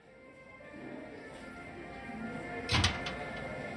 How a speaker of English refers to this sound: I swung open the door and the Christmas music roared at us.